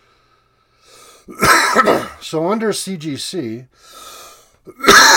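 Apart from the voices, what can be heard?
coughing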